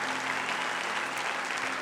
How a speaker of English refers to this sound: Well, put your hands together like you really love him. Let's give Pastor Art a big hand.